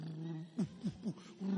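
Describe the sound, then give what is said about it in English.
Three short, low, rasping snores in quick even succession, each dipping in pitch, over a steady low hum with no talking. “Then the network is fluctuating because you are snoring.”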